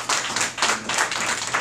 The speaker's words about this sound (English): Give yourselves a hand of applause.